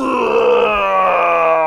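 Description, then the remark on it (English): A voice imitates the scream of a Rancor being strafed by red laser beams: one sustained, loud, harmonic-rich groaning roar lasting under two seconds, holding a steady pitch with a slight waver. “Strafe the ground up the side of the Rancor, which screams, extends one hand.”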